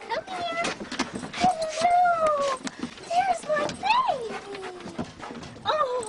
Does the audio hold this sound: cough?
no